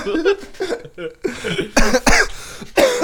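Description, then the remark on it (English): A person coughs repeatedly in a harsh fit, several rough bursts in quick succession with brief gasping pauses between them. “Fuck this cough.”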